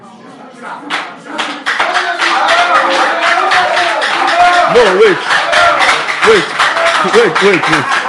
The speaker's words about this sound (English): You people clapping, what do you know about wives?